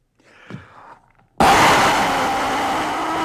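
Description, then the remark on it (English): A voice imitates the noise under the surface of the Yangtze River: a soft breathy gasp, then an abrupt, loud, steady rushing hiss-roar that holds unbroken until the end. “And now, I don't usually do impressions, but I'm going to do for you an impression of what it sounds like under the surface of the Yangtze River, and it's something like this.”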